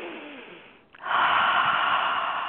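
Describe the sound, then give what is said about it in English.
A long, deep breath drawn in through the nose, a soft airy hiss that pauses briefly, then swells louder and steady for over a second, with no talking. “It's a deep breath through the nose, like you're filling a glass of water up at the top of your head.”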